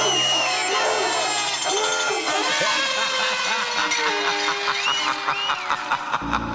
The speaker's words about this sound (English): Yeah, that deserves a round of applause, so we're saluting you right now.